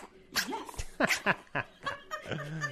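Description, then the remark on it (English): A tiny male dog growls in a string of short, squeaky bursts with rising and falling pitch, finishing on a longer, steadier low growl. No one talks. “Oh, is that his growl? Yeah, he's trying to be like tough.”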